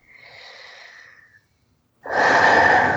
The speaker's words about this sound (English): Tapping the bottom of the fourth finger and breathing.